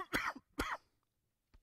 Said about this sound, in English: Sorry, that cough.